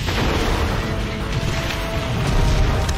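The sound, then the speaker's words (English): A loud explosion boom rolls on as a dense, continuous rumble with heavy low end, staying steady for about three seconds with no voices. “But you literally can't be a superhero without walking away from an explosion.”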